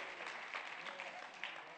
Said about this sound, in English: Let me just give you a hand of applause. 37 years.